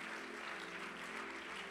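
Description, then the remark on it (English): During a church worship service, an audience claps to praise the Lord in a steady, dense, continuous wash of many hands clapping at once. A low sustained hum or organ tone runs underneath, with no distinct voices. “Come on and clap your hands one more time unto the Lord.”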